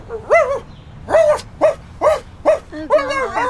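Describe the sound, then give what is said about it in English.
A person imitates a dog, letting out about six loud barking yelps in a quick, uneven series, with a longer whining bark at the end. “Why did I just bark like a dog?”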